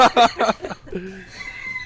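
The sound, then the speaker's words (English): A rooster crows, a loud, harsh run of strained syllables that breaks off after about a second, leaving a faint, hissy background. “Chevy Bel Air and that rooster.”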